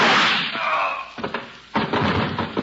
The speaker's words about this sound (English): Holy smoke. Those shots came through the transom. Come on. Somebody been in the next room all the time.